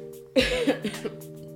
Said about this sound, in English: Sorry guys, I keep coughing. Don't have corona.